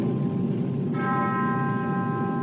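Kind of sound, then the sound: signal or alarm, church bells tolling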